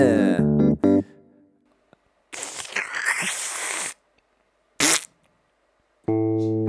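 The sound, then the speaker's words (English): A manual tin opener, twisted by hand, grinds and scrapes through a can of chicken korma in one rough, gritty stretch, followed later by a brief sharp burst. Low buzzing tones sound at the start and end. Nobody speaks. “Here's a tin opener. I'm opening korma. Twist and twist.”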